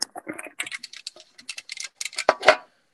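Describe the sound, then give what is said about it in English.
Crisp crunching of popcorn being eaten: a rapid, irregular run of brittle crackles and snaps, ending with a couple of louder crunches. No one speaks. “No, I crunched my popcorn.”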